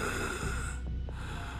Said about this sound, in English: And you can hear the sounds of snoring.